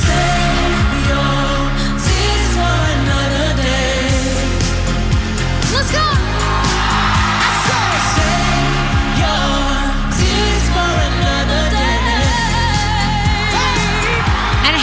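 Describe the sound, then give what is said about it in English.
A concert audience at the iHeartRadio Music Awards screams, yells and sings along over loud live music, with a lead vocal and steady beat in a dense, continuous wash of sound. “Was it to just hear an audience coming back at them and screaming and yelling and singing?”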